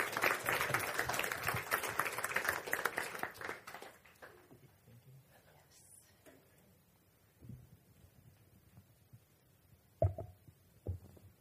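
A crowd applauds with dense, steady clapping for about four seconds as a young woman comes up to share about her service trip to Ecuador, then it dies away into quiet broken by a few soft thumps and shuffles.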